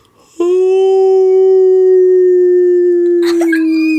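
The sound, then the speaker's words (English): A person imitates a long, eerie canine howl, one loud sustained note held steady for several seconds before it cracks and wavers at the end. “I gotta make it a scary howl.”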